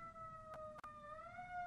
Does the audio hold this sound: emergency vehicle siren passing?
yes